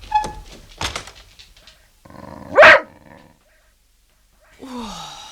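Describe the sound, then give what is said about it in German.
A dog barks once, loud, after some soft thumps and shuffling, and a drawn-out, lower canine vocal sound follows near the end. “Wir gehen noch mal kurz mit unserem Hund Gassi.”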